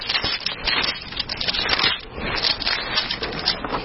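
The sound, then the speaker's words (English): Thin paper Bible pages rustle and crinkle steadily as they are flipped and shuffled to find Hebrews 13, a continuous dry papery crackle with no voices, moderately loud throughout. “I know those of you who are using electronic Bibles, you're probably laughing at us as we're shuffling through paper pages.”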